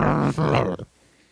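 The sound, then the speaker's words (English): A human voice imitates a low, rumbling growl in two loud bursts lasting under a second, then cuts off into near silence. “Right nearby you hear growling.”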